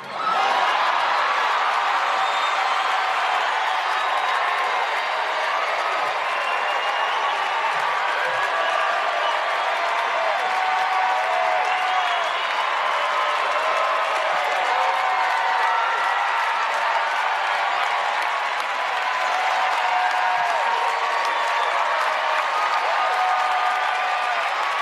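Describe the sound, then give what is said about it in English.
A large crowd cheers and applauds Robert De Niro cursing Donald Trump, loudly and continuously, a dense wash of clapping mixed with shouts and whoops that holds steady for the whole stretch without letting up. “Said to a cheering room of people who are anti-gun that make millions of dollars off of movies using guns.”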